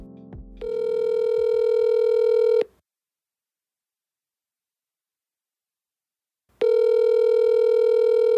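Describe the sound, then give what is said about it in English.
A quick flurry of phone dialing beeps gives way to a loud, steady telephone tone that buzzes for about two seconds, stops for four seconds of silence, then returns. No one speaks. “When we spoke to him over the phone, he told us something we had completely overlooked in his email.”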